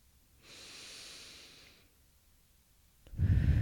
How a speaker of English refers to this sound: Breathing in to the top of the head. 1, 2, 3, 4. And out. 5, 6, 7, 8. And as we continue with this pace of breathing, we are opening up the crown chakra.